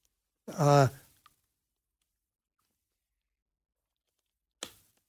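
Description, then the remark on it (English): Someone sips water: a short voiced, sigh-like exhale, a tiny click, then a long silence before a brief breathy burst, consistent with drinking and setting down a glass. “And let me get a little sip of water.”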